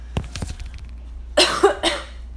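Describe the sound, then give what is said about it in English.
A short coughing fit after smoking two cannabis joints: a few lighter, hacking coughs at first, then three loud, raspy, breathy coughs in quick succession, with no talking. “Y'all hear me dying?”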